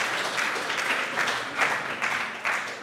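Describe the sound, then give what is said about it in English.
A steady round of applause from a small crowd, a dense patter of many hands clapping at once, fairly loud and continuous for a few seconds with no voices. “and then the lawnmower spluttered into life, which I think deserves a little round of applause.”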